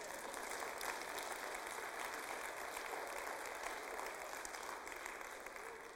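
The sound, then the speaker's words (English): A church audience at a Sunday service claps steadily throughout, a dense, continuous wash of many hands at a fairly even level, with no voices standing out. “I spent Sunday, clap it up.”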